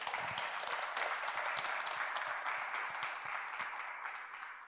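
A sustained round of applause from a crowd welcoming a speaker, dense overlapping claps at steady loudness that slowly taper off toward the end, with no voices over it.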